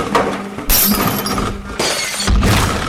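Chairs crash together and things fall: a run of loud, harsh crashes with clattering and breaking noise, three main impacts about a second apart, no voices.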